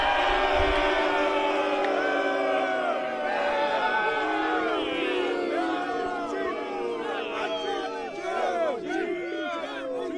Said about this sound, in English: A divided crowd for Roman Reigns, but I will say he's got a big fan there and a bowling pin. So yeah, a lot of heat, as you can probably tell here.